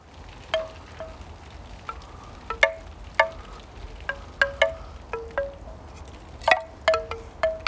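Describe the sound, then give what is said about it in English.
Wind chimes in a back garden ring out in scattered, overlapping strikes, bright metallic tones that decay slowly, irregular and unhurried over a soft steady wind hiss. No one speaks. “But we've got some wind chimes, you see.”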